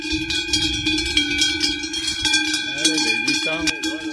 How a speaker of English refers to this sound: Well, now we've done that and we've heard the cowbells, we better go find the cows.